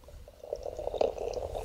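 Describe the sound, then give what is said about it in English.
A short, steady pour of beer into a Deutsche Schule zu Johannesburg Windhoek Beer Bazaar 1998 glass, a soft gurgling splash that swells after a brief quiet start and keeps running. “Okay, well, let's pour this.”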